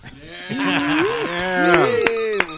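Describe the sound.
A man imitates a pig squeal, referencing the film Deliverance, voicing a loud, drawn-out wavering cry whose pitch bends up and down for a couple of seconds, with a few sharp clicks near the end.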